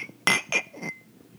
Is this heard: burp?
no